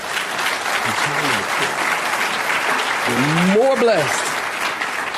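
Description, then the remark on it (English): An audience claps their hands in a dense, steady wash of applause that lasts throughout, with a few voices calling out over it, one rising in pitch near the end. “Somebody clap their hands and say amen.”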